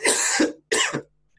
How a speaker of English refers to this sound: Sorry, man, I've got a really tickly throat. Hang on, I'm just going to leave my mic while I cough.